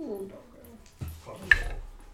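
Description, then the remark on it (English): A person mimics a dog whimpering, a short whiny tone followed by a couple of sharp yelping bursts, all within about two seconds. “I'm a dog.”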